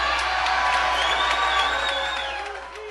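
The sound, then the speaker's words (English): A large crowd at a political rally for Senator Wendell Ford cheers and applauds continuously, a dense wash of clapping and whoops with a few rising shouts, loud for the whole stretch before easing off slightly at the end. “Okay, if we're gonna hear this old man stifle a crowd, I'm in.”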